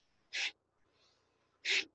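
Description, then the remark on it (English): Two loud, sharp bursts of breath, forced out about a second and a half apart, with a faint, softer breath drawn in between them, with no talking. A seated person doing kriya breathwork, inhaling to the left and forcefully exhaling to the right. “So I'm kind of showing a kriya right now where you sit down, you inhale to the left and forcefully exhale to the right.”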